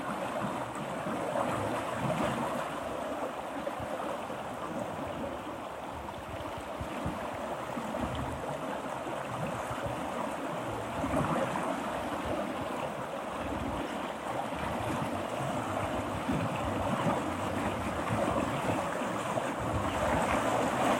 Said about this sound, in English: It's really lovely to feel the pulse of this river. I imagine the glaciers high above breathing. And that's the breath of this river. Every once in a while it slows down a bit and then picks up. Everything breathing together.